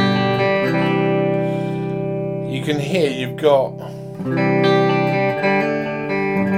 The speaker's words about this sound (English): Now if we go to the middle position on a Les Paul, both pickups on about 7, tone controls flat out.